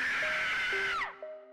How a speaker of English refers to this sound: She let out an ear-piercing scream in the narrow acoustics of the prison cell.